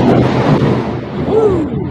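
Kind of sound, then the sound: nature, thunder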